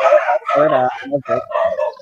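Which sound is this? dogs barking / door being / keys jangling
dogs barking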